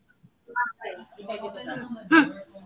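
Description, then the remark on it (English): A voice mimics the jingle of shaken coins with a quick run of clicky, chattering vocal bursts, ending in a louder, brighter burst. It is moderately loud, with no other sounds. “You guys know when you shake coins?”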